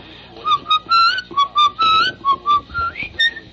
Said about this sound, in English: I'm whistling something. What was I just whistling there? Which is another whistling song. What is that? Semper Fidelis?